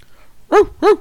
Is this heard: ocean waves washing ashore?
no